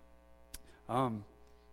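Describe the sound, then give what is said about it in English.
A steady, low electrical hum from a sound system drones through the whole stretch, joined by a single sharp click and a short burst of a voice partway through. “is there any way we can get that humming out, if that's okay?”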